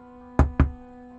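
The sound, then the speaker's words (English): Two quick, solid knocks on a door, fairly loud, spaced a fraction of a second apart over a faint steady hum. “Let's just knock. So I'm going to try knocking three times.”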